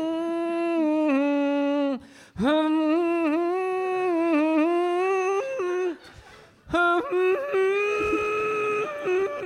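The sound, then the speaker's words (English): A person hums a slow, soothing tune in three sustained phrases separated by short pauses, the steady voiced melody stepping gently up and down in pitch. “I was just walking by and I couldn't help but hearing that soothing music.”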